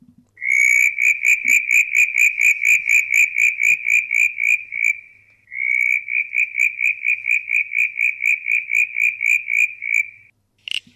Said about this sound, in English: Yeah, so there's... very sonorous, isn't it? Yeah, absolutely. It's quite hard on the ears when you got the headphones on, of course. The southern brown tree frog.